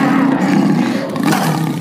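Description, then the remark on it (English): A person lets out a long, loud roar imitating a big cat, a sustained growling bellow lasting nearly two seconds, forceful with a rough, throaty texture. “And let's start this way. We roar together.”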